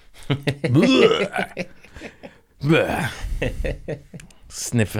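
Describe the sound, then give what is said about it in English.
A voice imitates gagging and retching, two drawn-out, guttural heaving bursts with strained rising and falling pitch, fairly loud, followed by a short final grunt. “He made a vomit noise.”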